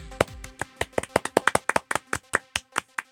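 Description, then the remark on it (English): A small group claps at a recording at WESA in Pittsburgh, producing a quick, uneven run of sharp, crisp hand claps at moderate volume. The claps stay distinct rather than blending into a dense roar. “Can we clap? You can clap.”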